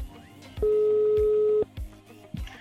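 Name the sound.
telephone call ringing tone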